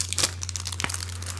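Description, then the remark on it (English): Crisp, crackly crinkling of a foil package of ten Mickey Mouse Mylar balloons being handled, with two louder rustling bursts amid continuous fainter crackles and a steady low hum underneath, no talking. “Mylar balloons. These are Mickey, the true original. You get 10 Mylar balloons in here.”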